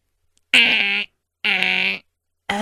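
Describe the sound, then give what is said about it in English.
A voice imitates a car alarm, in a sound effects competition with a lyrebird: three loud, buzzy, steady-pitched blasts, each about half a second long, separated by short gaps of silence, with no talking. “Now do the car alarm.”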